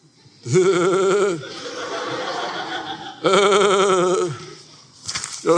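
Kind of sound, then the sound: animal, sheep bleating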